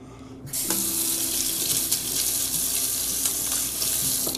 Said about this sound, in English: I love my little red teapot, and I love brewing my hot water every single morning.